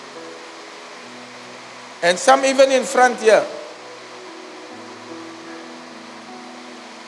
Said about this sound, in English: And we have to put a ceiling in to dampen the sound of the rain.